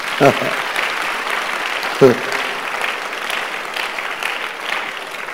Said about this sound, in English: Oh, this place, you can clap for Jesus Christ.